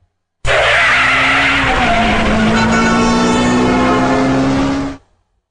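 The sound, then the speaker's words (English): A limousine skids in with a loud, sustained tire screech and engine roar lasting several seconds, then stops abruptly. No one speaks. “Anyhow, oh, here's my limo.”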